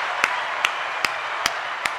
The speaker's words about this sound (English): I need that applause. I need that a fucking applause, dude.